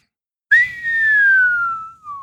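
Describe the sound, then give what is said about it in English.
A single loud whistle by a kid dropping dung bombs from one of the upper branches, starting sharply high and sliding steadily downward over about a second and a half, like the falling whistle of a dropped bomb, ending with a brief trailing note. “The kid was dangling more bombs over them and whistling every time he let one go.”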